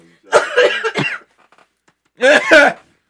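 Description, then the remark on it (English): Fairly loud coughing comes in two bursts: a rough run of two or three coughs, a short pause, then another quick pair of harsh, throaty coughs. “I coughed a little bit.”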